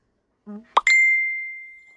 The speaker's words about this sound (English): I'm going to have to turn those notifications off. I am so sorry. I'm just having all sorts of dings sent to you and everything else. That was me again.